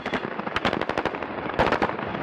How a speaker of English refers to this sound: The footage is grainy and a little shaky, but it clearly shows an army vehicle coming to a stop near a pickup truck. And then the soldiers inside begin to open fire.